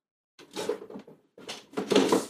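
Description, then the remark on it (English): A huge drawer full of oil and acrylic paints is pulled out in two scraping, rumbling slides, the second louder and rattling as its contents shift. No one talks over it. “Pulled out a huge drawer.”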